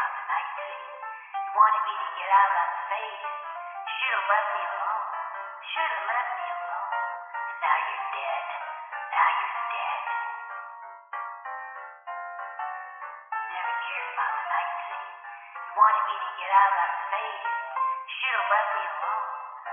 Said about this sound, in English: The telephone startled her. She spun around on the sofa, gripped the wedge as the voicemail message replayed her own voice.